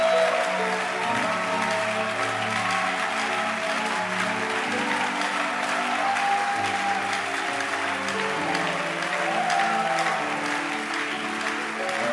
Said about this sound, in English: Don't stop clapping.